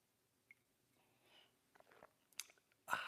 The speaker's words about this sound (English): Fill it with your favorite liquid, I like coffee. Join me now for the unparalleled pleasure of the dopamine hit of the day, the thing that makes everything better. It's called the simultaneous sip. It's going to happen right now. Go.